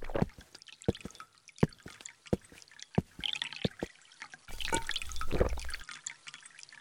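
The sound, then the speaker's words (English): Water drips in quick, irregular plinks, then a fuller splashing pour rushes in for a second or so before tapering back to scattered drops, fairly quiet with no voices. “You might not need water, but you could use some.”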